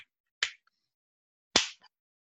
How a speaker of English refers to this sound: Clapping your hands at me.